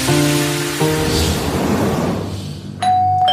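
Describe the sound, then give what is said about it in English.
A doorbell rings a two-note ding-dong chime, clear, then fades into a hiss before a brighter electronic tone sounds near the end. No one speaks. “Why do they have the doorbell?”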